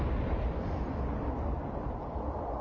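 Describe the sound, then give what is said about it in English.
A deep, roaring explosion sound effect that stays loud and steady throughout, heavy in the low end with a dense crackling texture and no clear onset or fade. No voices. “My first sound effect. You didn't just pop your cherry, you blew it up.”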